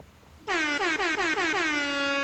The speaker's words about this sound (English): my buzzer's gone.